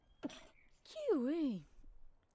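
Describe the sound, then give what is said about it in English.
A short intake of breath, then a loud, voiced sneeze: a sharp airy burst followed by a drawn-out, wavering 'choo' that dips and rises in pitch before cutting off. “Hang on, let me just sneeze. Bless you.”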